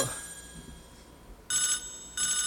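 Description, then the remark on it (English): A lower-pitched phone ringtone chirps in two loud, buzzy bursts separated by a short pause, following a quieter faint tone at the start, with no talking. “I answered the phone and it was just a lower pitched ringtone.”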